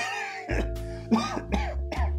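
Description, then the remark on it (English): A priest coughs several times in quick succession into his fist, somewhat muffled, with harsh bursts and throaty tails between them. “The priest began coughing into his fist again.”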